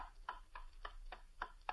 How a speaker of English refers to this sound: All is silent save for the ticking of a clock on the shelf.